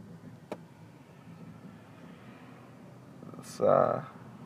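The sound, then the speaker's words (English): A steady low rumble of traffic heard from inside a car, with a sharp click early on and a short, louder tonal burst rising near the end. “this traffic looks pretty bad.”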